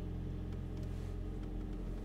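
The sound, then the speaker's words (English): A steady, low engine rumble fills the inside of a moving car bought about a year earlier, droning continuously with faint higher rattles and road noise over about two seconds while a light rain falls, no voices present. “The car that I'm in is my wife's car, and she bought it last year around this time.”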